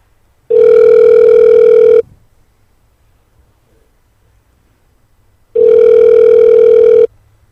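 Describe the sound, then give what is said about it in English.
A telephone ringback tone on an outgoing call: two long, steady electronic buzzes, each about one and a half seconds, separated by a few seconds of silence, heard clearly with no talking. “All right, it's ringing.”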